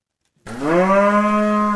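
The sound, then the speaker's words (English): A Texas Longhorn cow on a central Queensland family stud of about 90 registered Texas Longhorn cattle lets out a single loud moo that begins after a short silence and holds as a steady, drawn-out bellow for over a second. No one speaks. “His central Queensland family owns a stud of about 90 registered Texas Longhorn cattle.”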